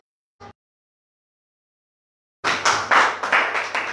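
A single short clap, a pause of silence, then a burst of several people clapping together, fairly loud, with a brisk uneven rhythm and no talking, during a church sermon.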